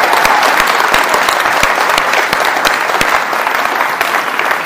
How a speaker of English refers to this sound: Now, I'm not going to want to hear at this moment what my lead elder calls the golf clap. Okay? I want to hear that, yes, we're behind you clap. Can you just applaud the guys who are in art? Woo!